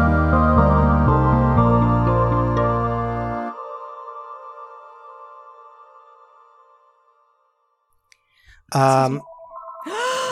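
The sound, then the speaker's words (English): A phone ringtone of loud, bell-like chiming notes plays in a stepped melody, then stops and its ringing tone slowly fades out. A brief voice follows near the end. “Now I've got to wait for that to stop. I can hear the bells.”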